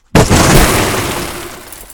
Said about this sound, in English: there you have it. An explosion.